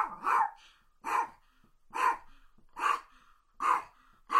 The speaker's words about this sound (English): And let's see if this year we can get Paco to bark for us. Paco, you want to bark? Tell everybody to support their animal shelter.